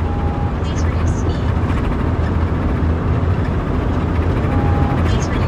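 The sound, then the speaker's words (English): An automated truck voice warns the driver to reduce speed as the truck is driven a little fast, half-buried under loud, steady road and engine roar inside the moving truck, with a short electronic tone near the start and end. “Please reduce speed? Yeah, well... That's the truck I'm in. Yells at me.”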